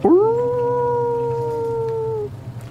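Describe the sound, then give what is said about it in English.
A voice imitates the distant howl of a large, gray, dark wolf named Goldrick: one long, steady, mournful note that swoops up at the start and holds for about two seconds before breaking off, heard alone with no talking. “You shout out for about 10, 15 minutes or so before you hear a distant howl.”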